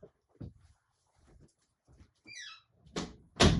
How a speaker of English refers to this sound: I had to shut my door.